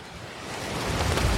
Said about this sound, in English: The wind is still going strong, though I was able to at least get some water to be lukewarm so that I could make dinner.